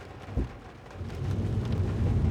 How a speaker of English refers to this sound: You can probably hear the rain lashing on the roof and on the windscreen because things have taken a bit of a turn, haven't they,